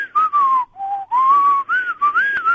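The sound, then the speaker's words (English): An inhaled whistle made by sucking air inwards: a breathy, airy tone slides between a few sustained pitches in short phrases with brief breaks. It is fairly loud, with no talking. “I can whistle by sucking inwards, mind you.”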